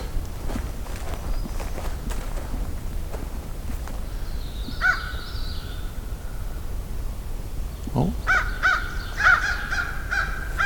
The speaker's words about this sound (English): Lots of crows, but I heard a distant raven, too.